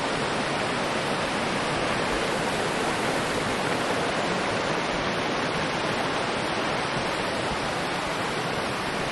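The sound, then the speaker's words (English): A mountain river in the Wallowa mountains, officially called a creek, rushes steadily on 29 August 2018, a dense, unbroken roar of flowing water that fills the whole recording, with no voices and no change in intensity. “I'm seated comfortably on a full-blown, magnificent mountain river, not really a creek.”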